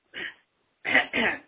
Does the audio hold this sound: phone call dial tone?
no